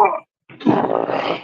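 A big female dog, woken while sleeping on the floor, grunts once, briefly, then lets out a longer, drawn-out groaning moan, fairly loud, with no talking over it.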